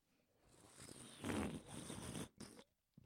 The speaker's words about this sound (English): You know when you made that, when you took a sip of your Red Bull? Yes. Can you do it again, please?